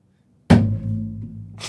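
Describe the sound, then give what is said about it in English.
A single sharp, heavy demonstrated beaver slap lands with a deep, booming thud that rings on low for a second, then a second hit begins just as it ends. No one speaks. “We got to ask a lifty about the beaver slap.”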